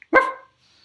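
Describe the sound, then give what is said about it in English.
A small dog that looks like a Staffordshire Bull Terrier lets out one sharp, loud bark, then the moment falls quiet with only a faint high hiss lingering. “So today, we're going to look at this little dog here.”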